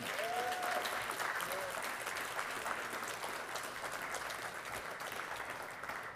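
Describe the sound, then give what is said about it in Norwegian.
Sustained applause from an audience, a dense steady clatter of many hands clapping at an even loudness for several seconds, with a few faint tonal whistles or voices near the start. “Skal vi gi dem en skikkelig klapp?”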